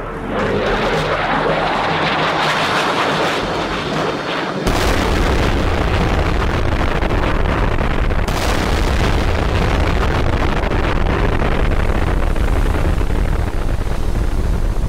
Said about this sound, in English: They dropped two 800-kilogram precision-guided bombs which smashed into the Pong Su's hull. Footage shows two bright flashes and the ship's red and black bulk disappearing into a huge dark cloud as debris flies up and out.